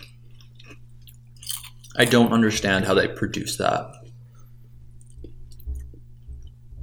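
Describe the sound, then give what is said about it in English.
Chewing of light, crunchy, cinnamon-scented wheat and rice crackers, with faint scattered crunches before and after a short spoken remark, over a steady low hum. “They're so incredibly crunchy.”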